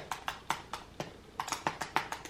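Computer keyboard typing: a dozen or so sharp, crisp key clicks in an uneven rhythm, with a short pause midway, heard alone with no voices over a faint background hiss.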